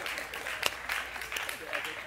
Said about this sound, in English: Now, and thank you. Thank you for clapping for that.